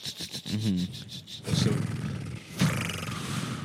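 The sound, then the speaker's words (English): A voice imitates doves taking flight, as in John Woo films, starting with a quick run of rhythmic breathy pulses like flapping wings, then rough, whooshing bursts of noise that swell and fade. “It's the doves flying.”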